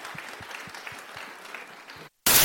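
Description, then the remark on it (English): An audience applauds for the guests of an event with steady, dense clapping at moderate loudness and some low thumps underneath, then it cuts off abruptly and a brief loud burst of noise follows. “can we please get a round of applause for all of our guests?”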